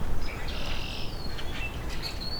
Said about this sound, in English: Okay, so I'm coming up on Rusty Blackbird. He's still singing.